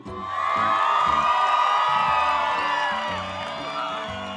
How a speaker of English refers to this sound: Now, let us go cheer for our teams who are playing the match, Team India and Team England.